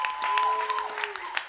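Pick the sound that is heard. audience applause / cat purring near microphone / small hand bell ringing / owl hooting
audience applause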